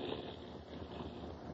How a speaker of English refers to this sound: And then, making my outboard miss a few times by cutting the switch, I hove to alongside.